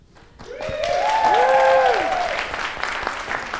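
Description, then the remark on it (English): An audience sitting in the cold breaks into steady, dense applause for a performer whose time is up; it swells within a second and holds loud, with a few rising and falling whoops or cheers carried over the clapping. “Another round of applause for David Hetty.”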